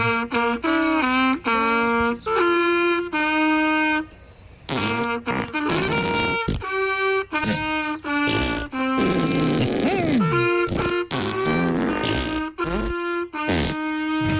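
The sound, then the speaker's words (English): A tune of Happy Birthday played entirely with buzzy, rubbery fart noises, each note a short, loud, raspy toot, running continuously with no voices. “Everybody's favourite thing to have a happy fart day birthday song played to them.”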